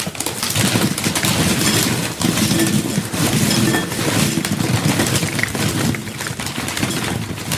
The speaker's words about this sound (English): Chips in a bowl and cat eating. Doesn't it sound impossibly hard to eat that, whatever he's eating, his little rocks?